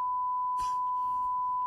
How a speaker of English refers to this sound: I put the bleeps in there.